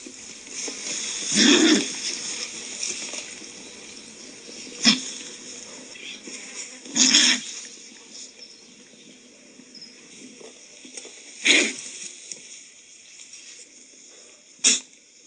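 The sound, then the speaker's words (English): A California condor gives about five harsh, breathy hisses and snorts at irregular intervals, some drawn-out and some short and sharp, over a steady hiss of background noise with no talking. “And so here's some condor vocalizations.”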